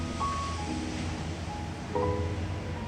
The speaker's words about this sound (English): Now it's time to move into the waves. Feel them washing past you. Crashing up and splashing you in the face as you move your way. Deeper and deeper.